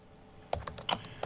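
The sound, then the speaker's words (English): A quick burst of typing on a computer keyboard, several sharp clicky keystrokes in an uneven rhythm, clear, following a brief quiet moment with no voices. “I love doing typing in sound design.”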